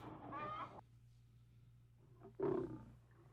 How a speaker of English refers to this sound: Wow. It's a lion. Because when I think of lions, that's what I think of. Mm-hmm. Like a belch. Right. Cause yeah. Or almost like this like constipated kind of growl, you know?